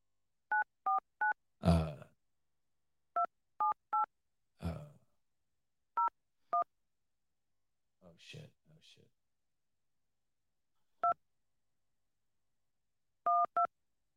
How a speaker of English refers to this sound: I don't know if it's appropriate to call her. Let me see. I'll just call her and ask her. Fuck it.